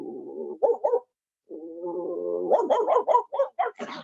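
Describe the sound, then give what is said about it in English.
A man practicing his bark imitates a dog: a low growl, a brief pause, a longer rising growl, then a quick run of about six sharp, loud barks. “Anyway, I'm practicing my bark.”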